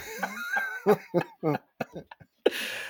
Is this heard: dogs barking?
no